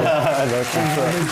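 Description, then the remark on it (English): A crowd sound effect of steady applause mixed with cheering voices, played in an empty studio during an interview, loud and continuous for the whole brief moment without any break. “Let's put the noise of a crowd.”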